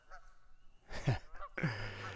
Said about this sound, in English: Here are the geese in our domain.